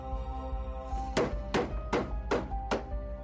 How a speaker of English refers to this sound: Benny closed his eyes as the first nails were put into place. He managed to make it through the hammering okay